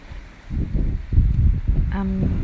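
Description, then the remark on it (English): Gusty wind rumbles and buffets in uneven surges on a very windy day at a small sheltered cove, with a brief tonal call rising over the blustery noise near the end. “Oh, it's a really windy day actually. We're a bit sheltered down here in this little cove.”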